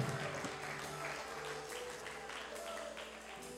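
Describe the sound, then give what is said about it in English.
A church audience gives the Lord one more hand clap, a steady, dense round of applause that holds at an even level throughout, with a low sustained tone and faint voices underneath. “Come on, let's give the Lord one more hand clap.”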